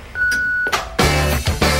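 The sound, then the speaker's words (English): A single steady, high-pitched beep from the Mojo Radio Show's answering machine holds for about half a second, followed by a short pause before loud music bursts in. “But please, wait for the tone and the boys will be with you shortly.”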